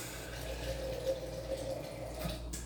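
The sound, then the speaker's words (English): Water runs steadily from a kitchen faucet, a continuous soft hiss with a faint tonal ring, fairly quiet, with no one speaking. “Yes, that was faucet water.”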